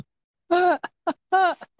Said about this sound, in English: This episode's going to be like 30 minutes long because I have to cut out half of it because it's all going to be yawning.